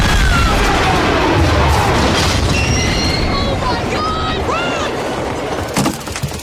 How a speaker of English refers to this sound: That train crash where he escapes, I thought that was a bit over the top.